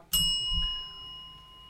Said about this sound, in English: Hit the bell. Hit the bell.